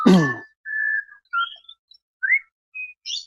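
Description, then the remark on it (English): Bird calls: a harsh, buzzy opening note followed by a string of short, high whistled chirps and rising sweeps, spaced irregularly with brief gaps and no talking. “Those birds just love you.”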